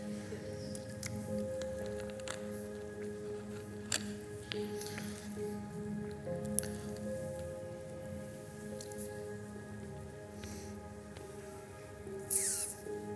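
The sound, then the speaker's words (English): Quiet sipping and swallowing as a speaker drinks a sip of water: a few soft wet clicks and gulps spread over several seconds against a steady low hum, with no one talking. “After my drink of water.”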